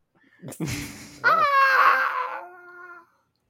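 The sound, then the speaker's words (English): A voice imitates someone screaming: a short strained burst, then a longer, high, wavering wail that trails off, fairly loud with no other sounds around it. “It sounds like someone's getting followed a little way as they're screaming.”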